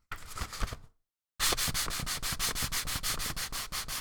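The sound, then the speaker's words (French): Grabeau rag paper rustles and rubs in a short dry burst, goes silent briefly, then returns as steady rhythmic crinkling strokes, about a dozen brisk even swipes, with no voices. “Maintenant, on a le papier chiffon. Ce coup-ci, de Grabeau. Donc, le son.”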